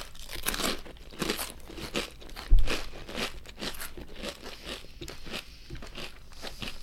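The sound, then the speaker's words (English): Loud crunching of pepperoncini-flavored potato chips being chewed, one chip folded over, a rapid series of crisp, crackly bites with one heavier snap partway through, and no talking. “Mine's doubled over, so this is going to be some crunch.”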